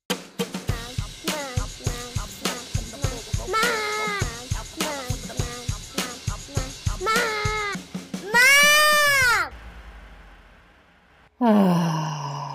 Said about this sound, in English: You can't be yawning yet. We haven't even started.